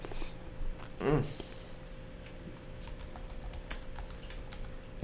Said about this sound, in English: He typing that thing, ain't he?